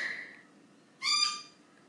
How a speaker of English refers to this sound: As my lorikeets continue to nag me in the background to go and let them out. Yes, that was Zoe.